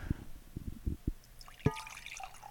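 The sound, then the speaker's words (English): A drink glugs out of a bottle into a glass in several quick, uneven bursts, fairly quiet, with a brief brighter splash near the end and no talking. “For every one of the pours that we do”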